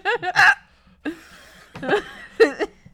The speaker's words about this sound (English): I wish I didn't get the hiccups when I laugh so hard, but I do.